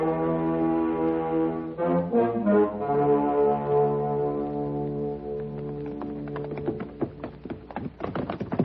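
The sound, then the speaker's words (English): Horse hooves clatter on rocky ground as horses are ridden downhill, a quick, irregular run of sharp knocks in the last few seconds. Before that, a long, steady horn-like tone holds. “Watch your horses don't slip.”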